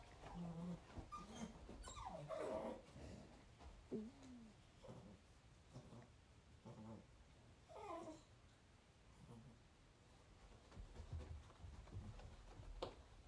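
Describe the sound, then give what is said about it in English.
A dog whimpers and lets out short high yips in a series of rising, whiny bursts, moderately loud, with quiet stretches between the outbursts. “Crazy dog.”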